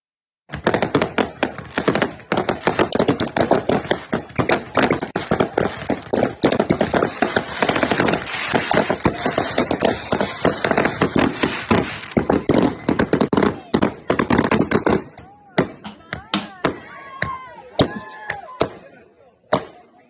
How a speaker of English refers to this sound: Sunday I went to my brother-in-law's 4th of July party. I sent you a little clip of the fireworks. Let's play those real quick.